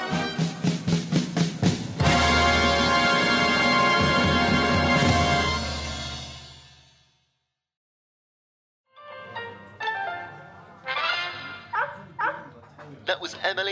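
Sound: puppy barking and yipping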